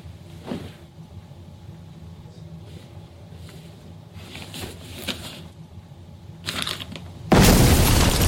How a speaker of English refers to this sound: It was such a powerful explosion, and he was killed instantly as a result of that.